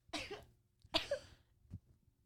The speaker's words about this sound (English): I don't want to be condescending, but that was three small coughs in a row.